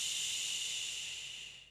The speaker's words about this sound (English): So the shusher I found fantastic for if we were heading out and about and we needed some, like, white noise or we needed that soothing, comforting shush. And it wasn't me having to do it every like 5 seconds.